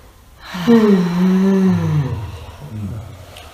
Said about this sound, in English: And we should be breathing in a manner that we always slightly disturb our neighbor. Yeah, just like that.